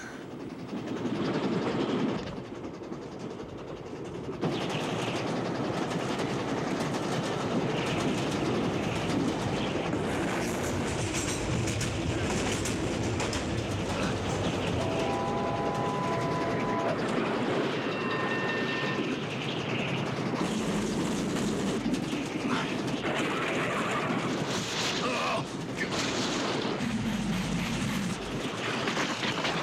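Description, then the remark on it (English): A train rumbles along steadily with dense, continuous clattering and rattling of carriages on the rails. It is loud, with brief high metallic squeals partway through and no voices. “I don't think there's anything particularly original about leaping from one carriage to another.”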